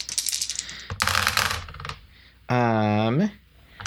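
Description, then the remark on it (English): Dice clatter and rattle: a run of light clicks, then a short burst of rolling dice against a hard surface, followed by a brief voice. “So I get five plus a computer, the computer dice.”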